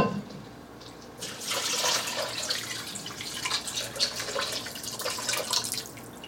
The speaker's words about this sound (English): Grown-ups, you can help pour the water in if it's too heavy for your young chefs so you don't spill.